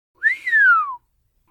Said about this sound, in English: Crowley let out an impressed whistle.